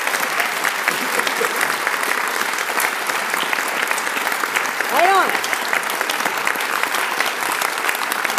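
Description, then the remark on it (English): Steady, dense audience applause fills the whole stretch, a bright crackling wash of many hands clapping at once. A voice briefly calls out midway through. “You can clap.”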